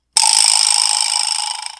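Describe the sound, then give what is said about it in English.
A single slap on a vibraslap, a musical instrument, sets off a loud, bright metallic rattle that buzzes steadily and slowly fades over a couple of seconds, heard on its own. “Dad, what is this called? A vibraslap. A vibraslap, okay. Want to give it a slap?”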